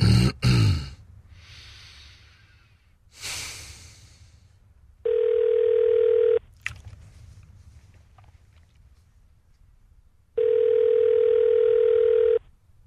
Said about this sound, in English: This is ringing abroad for some reason.